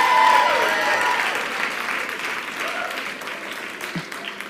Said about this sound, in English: That was a good place to clap right there.